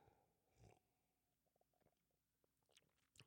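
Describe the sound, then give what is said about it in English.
Quiet sipping from a drink: a soft gulp near the start, faint wet mouth clicks and swallows in between, and another gulp at the end, with no talking. “Hang on, I just got to take a sip.”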